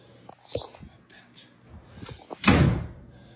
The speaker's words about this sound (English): They slammed the door, and then they opened it and slammed it.